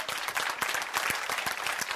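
A crowd applauds with steady, dense clapping, many sharp hand claps blending into a continuous bright wash at an even loudness throughout.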